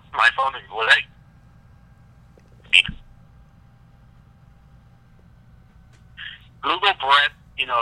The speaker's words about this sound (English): I heard a loud beep. I thought that might have been on your end or my end.